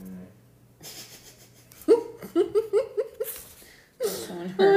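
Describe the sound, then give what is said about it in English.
A female dog grumbles in a run of short, throaty, pulsing vocal bursts, moderately loud, followed by a longer, louder groaning whine at the end. “My dog. That's all, like, she's being like, ugh.”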